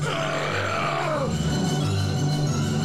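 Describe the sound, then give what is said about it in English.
A long, loud, drawn-out belch after drinking a cup of beer rumbles steadily for about three seconds, deep and throaty with a gravelly, voiced roughness and no talking over it. “So, guys, just in case, I just want to let you guys know that while he burped, an air bubble came out.”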